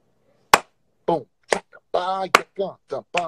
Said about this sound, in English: When I clap my hands, my glasses fly off. Boom.